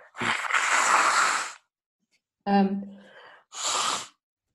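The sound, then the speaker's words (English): Someone blows their nose: one long, loud honking blast, then a shorter voiced snort and a final brief blow, with pauses between. “Blowing my nose.”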